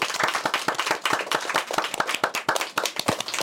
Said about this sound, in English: And so please give a big round of applause for our guest today.